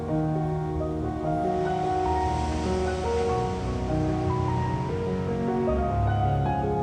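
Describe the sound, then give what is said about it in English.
Ocean waves wash steadily onto the shore in a continuous, fairly loud surf, with soft sustained musical tones humming underneath and no voices. “Let it splash over your feet.”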